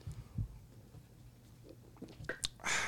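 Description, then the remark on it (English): Quiet wet mouth sounds as people knock back a Graham cracker shot, with small gulps and swallows, then a sharp breathy exhale at the end. “I'm just taking a Graham. Shot.”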